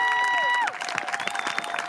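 A crowd at an outdoor march claps steadily for an organizer of the march, a dense patter, with a tonal whistle-like sound sliding downward in the first moments before the applause continues alone.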